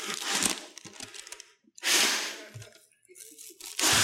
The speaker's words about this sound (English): If you're listening, I'm breathing in a bag right now.